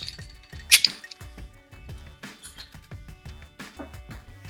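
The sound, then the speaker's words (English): A bottle cap is pried off a large bomber bottle of Stone IPA, a West Coast style IPA chilled on ice, with one quick, sharp pop and hiss near the start, over steady rhythmic background music. “So cheers. Here, let's crack my board. Yeah. Let's see how this goes.”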